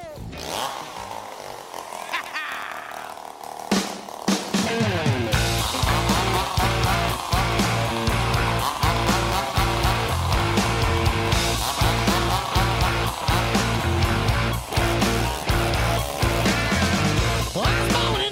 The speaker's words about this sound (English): one of them plays the chainsaw, and you heard it at the start there.